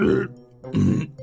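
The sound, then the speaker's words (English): Two loud, low, croaking burps in quick succession with a brief pause between them, a comic robotic burping sound effect from an activated robot walking around in circles, with no talking. “And as they activated the robot, it started walking around in circles and burping a lot.”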